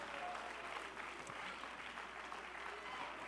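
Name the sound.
audience clapping hands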